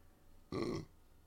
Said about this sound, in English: Less burping.